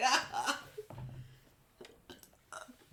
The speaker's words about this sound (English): Now I got the hiccups.